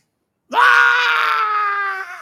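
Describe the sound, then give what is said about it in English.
A man's voice imitates a woman screaming as she ran out of a wedding party: one loud, high-pitched, sustained shriek that starts abruptly after a brief silence and holds steady for nearly two seconds before tapering off. “And when I turned to her to give a prophetic word, she ran out of there screaming.”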